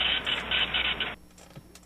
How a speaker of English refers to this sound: Electric saw, metal file, grinder, or printer? That's a printer. That's a dot matrix printer.